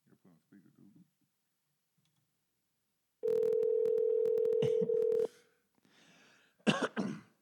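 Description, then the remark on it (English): A loud, steady telephone dialing and ringing tone drones for about two seconds, dotted with quick clicks, as someone places a phone call, between faint murmured talk at the start and a sharp cough near the end. “I'm about to call a couple of faithful listeners. Hopefully they answer the phone.”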